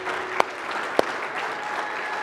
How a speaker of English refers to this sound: but not without us giving her a round of applause. Can we do that?